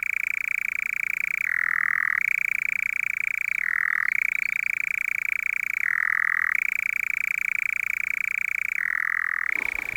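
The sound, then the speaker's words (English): A nightjar churrs continuously at dusk, a loud, dry, mechanical trill that drops briefly to a lower pitch every couple of seconds before returning to its steady note. No voices are heard. “I was about to comment on the cattle, but it's hard to talk about cattle when you've got nightjar going off.”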